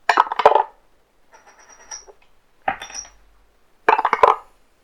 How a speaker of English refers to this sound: I'm going to drop one of my dice on the dice tower.